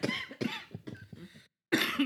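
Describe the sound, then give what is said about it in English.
A run of harsh coughs in quick succession, then a brief silence before one more loud cough bursts out. “So many coughs.”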